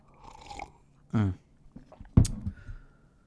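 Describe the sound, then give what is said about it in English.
Quiet mouth noises of someone sipping tea: a soft slurp, a short throaty swallow, then a sharper clunk like a cup being set down, with faint breathing between. “Let me just take a sip of my tea.”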